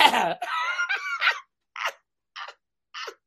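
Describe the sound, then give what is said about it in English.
A loud, drawn-out throat clearing, raspy and voiced, followed by three short, sharp clearing bursts spaced evenly apart, with no talking. “Let me clear my throat.”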